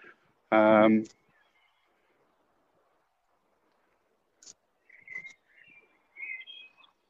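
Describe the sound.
Outdoors, a bird sings a few short, thin whistled phrases in the second half, fairly faint. A brief loud voice-like burst comes near the start, followed by quiet.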